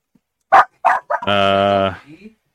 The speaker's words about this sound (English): Yeah, Smiley's back. The dog's going a little crazy.